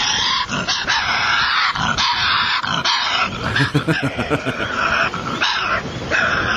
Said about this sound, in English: Here is how a Tasmanian devil sounds.